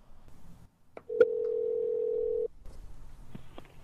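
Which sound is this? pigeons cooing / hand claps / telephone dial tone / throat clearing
telephone dial tone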